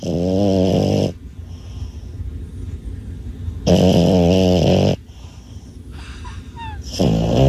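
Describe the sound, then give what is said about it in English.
Loud snoring: three rasping, rumbling inhales about three and a half seconds apart, with quieter breathy exhales in between and no talking. “I want you to see if you can pick out who is the dog snoring and who is the grown man.”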